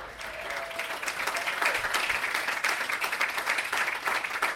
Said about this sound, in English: That's just applause.